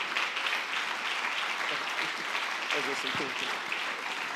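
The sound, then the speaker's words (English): A church audience claps for Jesus together in a dense, steady wash of applause that holds evenly for several seconds, with a voice briefly rising over the clapping near the end. “Let's clap for Jesus.”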